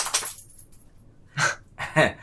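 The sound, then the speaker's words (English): A dog named Tina flaps her ears in three brief flurries of rapid slapping and rattling, each burst separated by a short quiet gap. “But dog flapping their ears.”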